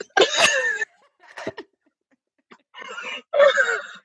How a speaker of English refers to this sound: I'm going to sneeze.